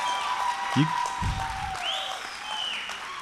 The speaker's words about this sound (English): Clap it up for them.